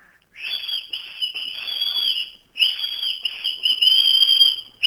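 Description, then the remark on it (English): A person whistles loudly in two long sustained phrases separated by a short pause. The pitch stays high and fairly steady with slight wavering, and no one talks. “Okay, you need to whistle.”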